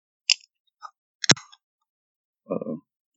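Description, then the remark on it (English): A can of Edmund's Oast Bound by Time IPA beer being cracked open: a few small metallic clicks, a sharp pop from the tab, then a short fizzing hiss. No one speaks. “I'll go ahead and crack this.”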